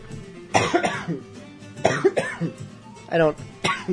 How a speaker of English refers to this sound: Did Walter Cronkite ever have coughing fits while on the air? James Earl Jones? Not that I'm in their categories.